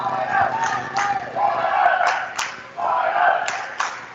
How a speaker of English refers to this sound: Hawkett fans yelling side out.